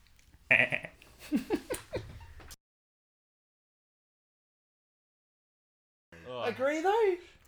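A bearded goat bleats twice, each a loud, wavering, quavering cry lasting a couple of seconds, separated by several seconds of silence. No talking alongside.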